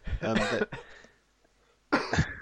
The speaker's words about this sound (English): It's just because you said strange characters and I laugh coughed.